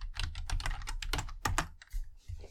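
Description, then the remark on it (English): Rapid, uneven clacking of keys on a loud computer keyboard, with a steady low hum underneath and no one speaking. “Sorry for my noisy keyboard”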